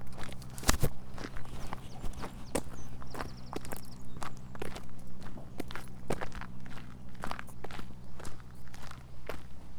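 A horse's hooves clip-clop steadily along a track in Whitecross, a Forestry Commission woodland, in an even walking rhythm, the sharp knocks clear over a low, constant background hum. No one speaks.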